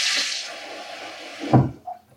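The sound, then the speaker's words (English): Water runs steadily with a bright hiss for over a second as 4 cups of water are measured into a 4-cup liquid measuring cup, then a short splash and a clunk as the flow stops, followed by a small knock; no talking. “in a 4-cup liquid measuring cup, we're going to start by measuring 4 cups of water.”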